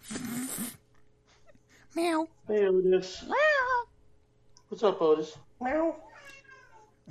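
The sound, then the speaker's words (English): A cat named Otis meows several times, drawn-out rising and falling cries spaced a second or two apart, with a person's voice chiming in between them. “Meow. Hey, Otis. Meow. What's up, Otis?”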